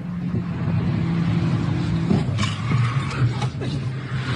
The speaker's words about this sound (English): These maniacs just crashed into that car deliberately.